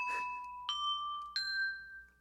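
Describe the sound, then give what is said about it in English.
Three clear bell dings struck about two-thirds of a second apart, each ringing on with a bright sustained tone that blends into the next, then fading out. No voices. “Just three bells.”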